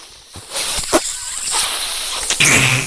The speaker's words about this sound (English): That's a big sniff there, right? Yeah. My God. Right.